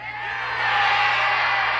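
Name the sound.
crowd of fans cheering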